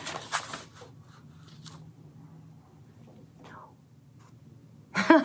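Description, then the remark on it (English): Sheets of paper are shuffled while searching for a poem: papery rustling and crinkling comes in short bursts, louder at the start, then quieter scattered shuffles, ending with a sharp burst of handling noise. “Oh my gosh, I have so many papers.”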